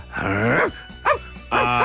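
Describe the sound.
A man's voice imitates a terrier barking and yapping: a drawn-out whiny yelp, then a short sharp bark, then another longer bark. Fairly loud, with no other talking.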